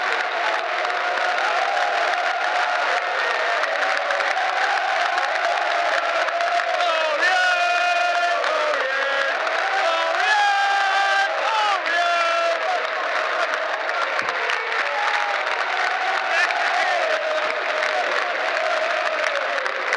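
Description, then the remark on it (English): Football fans in the Doug Ellis stand of a stadium clap and cheer continuously as the team comes over to clap the away support, with a dense wash of applause, shouts and whoops rising in bursts, loud and sustained throughout, with voices blending into the roar. “fans are now coming over to clap the away support here in the Doug Ellis stand.”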